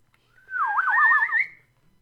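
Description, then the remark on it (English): A person whistles a short, wavering tune, the pitch sliding up and down in quick loops before rising to a steady high note, clear for about a second with no talking. “I can like just whistle. See, … can just whistle.”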